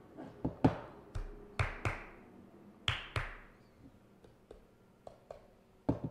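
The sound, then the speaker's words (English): Sharp mechanical clicks and clacks from the clapper of a small clock, arriving in an uneven rhythm. A few louder strikes ring briefly with a bright metallic tail, and no one speaks. “It's not dead. Oh, right. It has like a clapper or something.”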